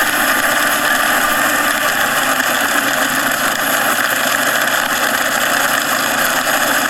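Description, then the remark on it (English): A fire truck engine idles steadily and fairly loudly throughout, a constant droning rumble with a hissy, mechanical edge and no voices over it, at a church fire in Russia. “Finally, the little fire truck, you can hear them calling right now for water.”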